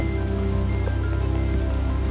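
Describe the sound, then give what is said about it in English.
Steady rain falls through a forest in a dense, continuous patter, even throughout, with faint sustained tones humming beneath the downpour. “With the rains here now, the forest can recover.”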